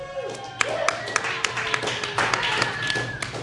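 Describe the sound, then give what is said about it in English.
At a show in Denver, an audience cheers and whoops to vote in support of stand-up comedy while scattered hands clap in sharp, uneven bursts, with shouting voices blending into a steady, moderately loud wash of noise. “The Knicks brothers didn't even cheer for that shit, and that's all they do.”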